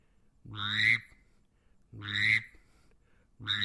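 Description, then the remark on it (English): A duck call blown while a right hand is pressed tight over its megaphone: three evenly spaced, loud blasts, each pairing a low buzzing bass note with a squeaky, rising upper tone. “So when, as I'm going burp, I'm taking my right hand and it's pressed tight against the megaphone”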